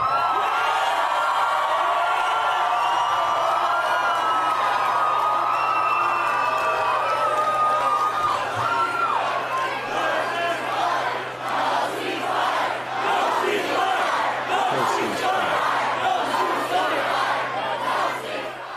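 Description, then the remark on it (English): A large crowd chants "no ceasefire" in loud unison in response to what Speaker Johnson said, the rhythmic shouts repeating steadily over a dense roar of voices and cheering, continuous throughout. “So if you couldn't hear what the crowd is shouting there, they respond to what Speaker Johnson said by chanting no ceasefire.”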